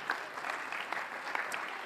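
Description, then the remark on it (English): A church audience claps their hands unto the Lord in a dense, steady wash of applause, many overlapping hand claps with no clear rhythm, moderately loud and continuous throughout, with no voices standing out. “Oh, clap your hands unto the Lord today.”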